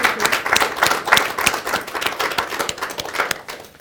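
A crowd applauding: dense, steady clapping from many hands, loud and sustained for a few seconds with an irregular patter of overlapping claps and no voices.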